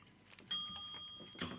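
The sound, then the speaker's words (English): A single quiz bell, rung by accident during a quiz, rings out with a sharp strike, its bright, clear tone sustaining for about a second over faint background rustling and clatter. “That was an accidental bell.”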